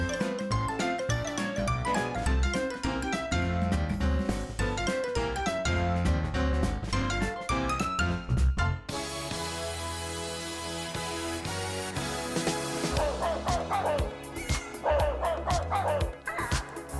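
Dogs bark and yip repeatedly over a loud, driving pop song, with cat-like meows and rising wails surfacing in the second half; the animal sounds are mixed into the music, with no talking.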